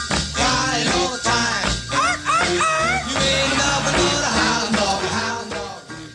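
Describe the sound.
A 1955 recording: an upbeat band plays loudly while a singer's voice slides and bends, with playful 'arf arf' dog-bark imitations sung into the song over steady drums.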